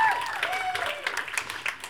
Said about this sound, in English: yeah, you can clap